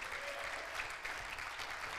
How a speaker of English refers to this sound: Somebody clap your hands and give God some praise.